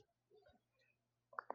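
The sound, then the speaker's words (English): Near the end, a sneeze comes in two quick, sharp bursts, after a stretch of quiet room tone with a low hum and a few faint, muffled sounds. “Bless you.”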